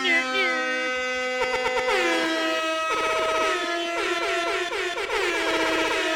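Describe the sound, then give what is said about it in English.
Loud hip hop air horn sound effects blare continuously, with stuttering rapid-fire bursts and swooping pitch bends layered into a dense, brassy wall of honks. “I got the hip hop air horns.”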